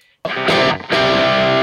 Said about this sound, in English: So this is what the distortion setting on this pedal sounds like in front of that plexi amp. It's actually really loud and fuzzy.